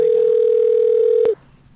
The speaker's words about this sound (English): He just doesn't pick up when he doesn't recognize the number.